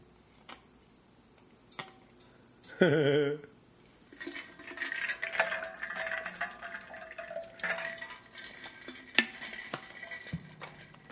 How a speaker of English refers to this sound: I should probably take a sip of water right now.